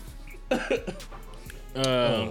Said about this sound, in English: Shit, this shit cough too much.